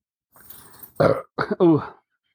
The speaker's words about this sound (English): Oh, that was a gross burp.